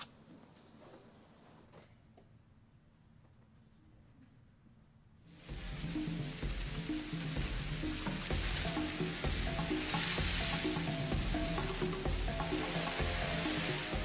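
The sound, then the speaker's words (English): A swarm of locusts, millions emerging after rains from eggs buried in the sand and gathering into columns: after several quiet seconds, a dense crackling, rustling hiss abruptly swells up and stays loud and steady to the end, with no voices. “Triggered by the rains, an all-devouring army. Locusts.”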